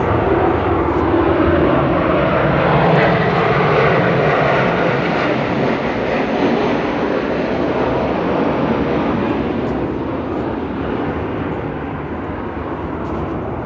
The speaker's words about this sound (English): Fucking airplane.